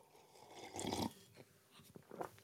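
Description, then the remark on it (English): A noisy slurp of someone sipping hot coffee made in a French press, lasting under half a second, followed by a few soft mouth and swallowing clicks and a brief quieter sip. No one speaks. “That's the sip of the day right there. The system, the coffee system, the coffee game plan of today.”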